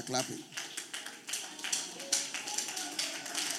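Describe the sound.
An audience claps in loose, irregular bursts, with sharp bright slaps overlapping at a steady moderate loudness for several seconds. A brief voice is heard at the very start.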